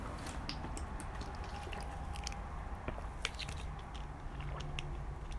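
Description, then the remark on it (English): Someone takes a sip of water: soft wet mouth clicks, a slurp and swallowing noises scattered over several seconds, with no talking. “Let me take like a sip of water before I speak.”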